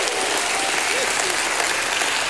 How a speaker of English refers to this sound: Give God a hand clap and a shout of praise.